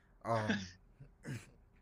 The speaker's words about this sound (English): excuse me. Oh, I hate coughing into the mic, my bad.